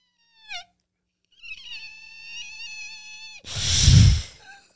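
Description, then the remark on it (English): A voice imitates a fart of the affluent Falcon Crest family: a quick descending squeak, then a long, steady high-pitched whistling tone that breaks into a loud, breathy, hissing burst before trailing off. “So it starts with a squawk and then goes right into hissy bird.”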